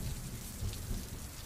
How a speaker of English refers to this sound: Once we entered the halls, nothing but the echo of thunder and rain could be heard in the halls, just like I thought.